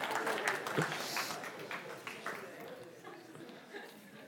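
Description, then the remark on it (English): An audience applauds in a steady, dense patter of many hands clapping for several seconds, holding a fairly even level and easing slightly toward the end, with faint murmuring mixed in. “Give yourself a round of applause and sit down.”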